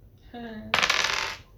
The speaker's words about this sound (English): Good luck! Come on, little dice, be nice. Just roll tens.